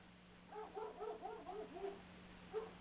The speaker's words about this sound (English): Oh, just hang on. My dog is barking at somebody. As long as he stays here, good puppy. People are allowed to walk by. It just doesn't happen often on my country road.